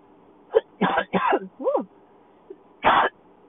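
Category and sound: human body sound, coughing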